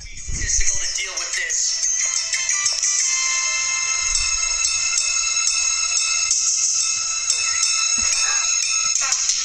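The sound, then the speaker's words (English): Bright, chiming synthesizer-like background music from a comedic TV scene plays continuously at steady volume, with high sustained tones and occasional low thumps underneath. “The music in this scene I found really funny, so I recorded it.”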